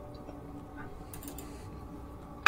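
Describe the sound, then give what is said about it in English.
A few faint clicks from an external computer keyboard, not a laptop keyboard, then one sharper, louder keystroke near the end, over a quiet background with no one speaking. “I'm using my keyboard, not my laptop keyboard, so that didn't do anything.”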